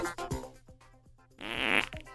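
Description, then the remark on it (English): Frogs croak in a steady series of low, raspy pulses about every half second, one longer and louder buzzing croak standing out near the end. No one speaks. “You could just a ribbit here or there.”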